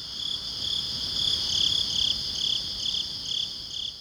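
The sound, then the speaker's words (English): A steady, dense chorus of crickets and other creatures trills continuously in high, pulsing bands late in the evening at night, with a faint low rumble beneath and no voices. “Later in the evening, the sounds of crickets and other beings can be heard amongst the silence of the night.”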